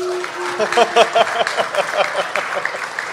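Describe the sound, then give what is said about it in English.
A short burst of audience applause in a straw poll approving of the job Mark Shapiro and Ross Atkins are doing for the Toronto Blue Jays, scattered claps crackling at a moderate level for a few seconds, with a brief tonal hum at the start and a few voices faintly mixed in. “By applause, do you approve of the job Mark Shapiro and by extension Ross Atkins are doing for the Toronto Blue Jays?”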